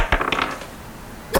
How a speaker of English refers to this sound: Roll a dice for me. Wisdom.